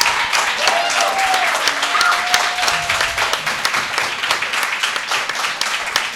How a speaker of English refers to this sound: Perfect. Let's give a big applause for our guests